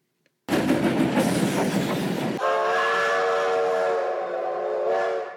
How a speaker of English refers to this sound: Ah, shucks. The train's coming and I didn't buy a ticket,